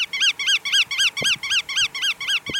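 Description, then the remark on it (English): A shorebird's sharp kuwit alarm call, recorded in Alaska, repeated about ten times in quick, steady succession. The calls are loud, ringing and slurred up then down, with no other sounds around them. “It also makes a sharp kuwit alarm call.”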